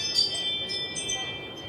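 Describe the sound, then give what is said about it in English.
A Ring video doorbell chime, set off by motion, rings out in bright, high electronic tones that sustain through the whole moment, with a few short notes flickering on top over a low background hum. “Is that the sound it makes? That's the sound that... There's motion.”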